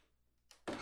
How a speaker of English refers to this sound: The door is now shut.